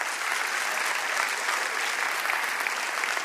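An audience claps steadily throughout, a dense, even patter of many hands at a fairly loud, constant level with no voices standing out.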